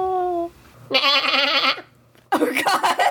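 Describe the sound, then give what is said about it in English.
A voice imitates a goat's bleat, giving two loud, wavering, nasal bleats separated by a short pause, clear, after a brief tonal hum at the start. “I can do a really good goat one when I'm trying to be a goat.”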